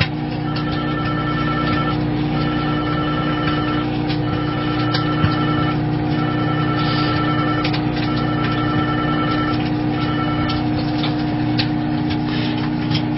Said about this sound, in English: That's an Odin mobile phone that is ringing.